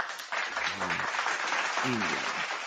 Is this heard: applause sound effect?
yes